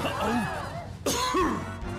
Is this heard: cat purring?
no